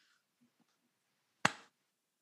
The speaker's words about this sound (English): I'll just clap and then we'll get started.